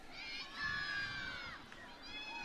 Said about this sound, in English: The crowd here at Southfield enjoying that last goal and looking for more. They've been treated to 21 goals in the last 3 home matches.